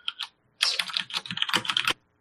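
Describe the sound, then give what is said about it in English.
Rapid clicking of computer keyboard keys, a short burst followed by a longer flurry of quick keystrokes with a brief pause between, no voices present. “I love the typing chatter noise that forms in Audacity when you type.”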